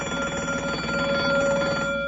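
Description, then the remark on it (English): A bell on a cereal-testing machine rings continuously for about two seconds after Rice Chex and Wheat Chex cereals are put in, a steady, bright, sustained clang with a strong ringing tone and buzzing overtones, with no voices present. “Those cereals really ring the bell for flavor, you bet.”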